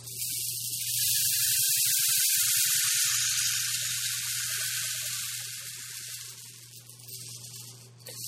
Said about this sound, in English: Beginning this category is the rain stick. Rain sticks provide both visual enjoyment and the unique sound of rain. Small metal balls strike obstacles inside an encapsulated cylinder. Here's what it sounds like.